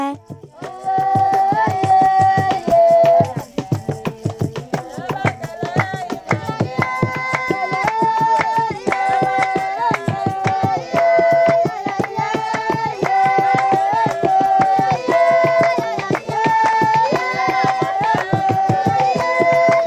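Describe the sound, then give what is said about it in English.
A group of voices sings the song Bakele outdoors, a lively, repeating chant-like melody with steady energy throughout. Rhythmic clapping or percussive hits keep a brisk, even beat. “These recordings of Bakele were made on different days.”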